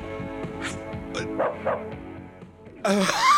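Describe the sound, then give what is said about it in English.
A man's voice imitates a dog barking, giving a string of short, gruff woofs and yips, ending in a louder, drawn-out bark. “Okay, that was a dude wearing makeup who has a katana and barks.”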